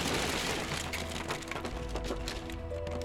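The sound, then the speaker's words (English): Wooden pier planks snap and splinter in a rapid series of sharp cracks over a dense, rumbling crash of collapsing timber, loud and sustained for about three seconds, with no voices. “Sam heard the planks snap before she saw Frankie thrown off the edge.”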